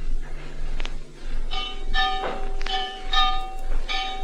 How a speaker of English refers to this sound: Add to these nagging thoughts the incessant clanging of that church bell just outside my window.